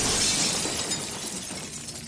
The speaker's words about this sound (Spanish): Fue un ruido súper, súper fuerte, seguido de ruido de cristales que se rompían. De verdad fue un ruido que me temblaban las piernas de cómo se escuchó, porque sabías que algo se había roto, pero que era algo muy grande.